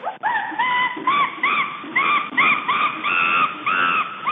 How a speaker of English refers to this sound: So the answer is chimpanzee